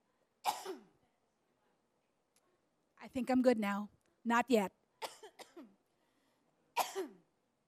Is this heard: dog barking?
no